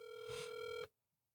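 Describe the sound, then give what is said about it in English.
A single steady electronic phone ring as a call is redialed, a bright buzzing tone lasting just under a second before it cuts off abruptly into silence. Clear, with no voices. “I hung up on B. Hold on. Let me get him back on the phone.”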